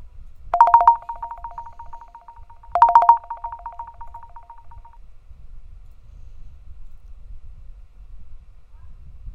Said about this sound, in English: Wait, so let me play this ringtone and see if you can hear it, because it shows that you can hear it.